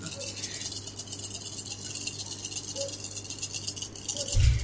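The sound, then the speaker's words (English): A steady rattling of dice being shaken for several seconds, small hard objects clattering together, ending with a brief heavier knock as the dice are rolled during a game. “Can I get 2 more dice, please?”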